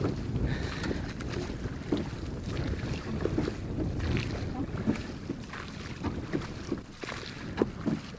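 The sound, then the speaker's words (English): A large blue rowboat, rowed by a man out to an island in cold, rainy, windy weather, moves across water with steady sloshing and splashing, occasional knocks of oars, and a constant rush of wind buffeting the microphone throughout. “This boat we're in is a large boat, blue in colour, and it's being rowed out by a man out to the island.”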